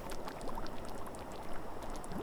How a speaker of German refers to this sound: Über das stete Geräusch des Windes hinweg hörst du ein sanftes Blubbern.